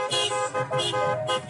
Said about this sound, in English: Horns honk in Miami in support of Joe Biden.